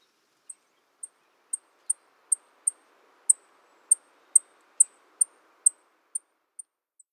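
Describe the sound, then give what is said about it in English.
Savannah Sparrow call notes: a series of about fourteen thin, very high, sharp chips given one at a time at slightly uneven intervals, fairly loud against a quiet background with no talking. “then Savannah Sparrow.”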